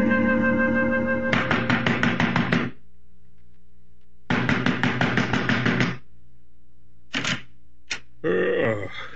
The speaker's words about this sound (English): You banging on the right door, mister?